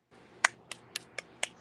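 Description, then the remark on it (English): Five crisp finger snaps in a steady rhythm, the first one loudest, with no talking over them and only a faint low hum underneath. “Or like they do in the poetry things. Oh, yeah. Snap it up.”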